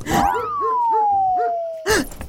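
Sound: dog barking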